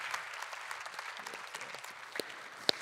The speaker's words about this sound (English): Awesome job, everyone. Give my helpers a big round of applause.